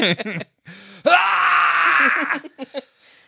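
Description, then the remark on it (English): A voice imitates its own aggressive, screaming way of vomiting: a short retching grunt, then a long, loud, strained screaming heave for over a second, trailing into a few choppy gagging sounds. “It hurt my throat just to imitate that. like, it is aggressive how I throw up.”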